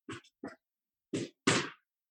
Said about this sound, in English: I think they're like working out or playing tetherball next door. Can you hear that? I think there's some kind of medicine ball type of action.